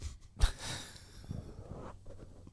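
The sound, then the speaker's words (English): A pet named Maya sniffs right up against the microphone in several quick, breathy, snuffling bursts, fairly loud, with one sharp puff near the start and no talking. “Maya sniffing the mic.”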